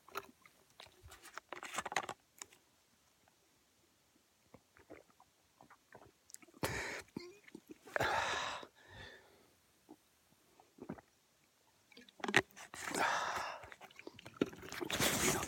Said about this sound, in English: Got a little bit more sun protection, but I'm going to have to drink some of this. Just hold on. Stand by.